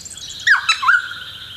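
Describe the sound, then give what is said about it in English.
A noisy friarbird gives a short, harsh burst of two or three gurgling, hiccuping notes, clear over a quiet background, with no talking. “I think it's a noisy fryer bird.”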